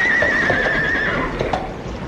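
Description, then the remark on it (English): A horse whinnies loudly, one trembling, wavering neigh lasting about a second, followed by a few soft clopping knocks over a steady background hiss. The horse is pulling a horse-drawn motor car that has stopped on a mountainside in the Dolomites during a storm. “I think the horse must be tired, sir.”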